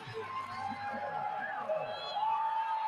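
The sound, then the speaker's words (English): A large stadium crowd at a football game in Columbia, Missouri roars and cheers as a woman is about to kick the football, a steady, continuous wash of noise that holds at an even level throughout, with indistinct voices mixed into the din. “You can hear the crowd.”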